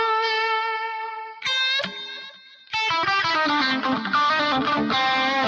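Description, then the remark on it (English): An electric guitar plays through a Dr. Z amp preset with added reverb and delay, giving a blues tone: a sustained chord rings out, a few bright picked notes, then a dense run of lingering notes trailing into echoes. “It's a Dr. Z preset that I got off of there. And then I just kind of add my own reverb and delay.”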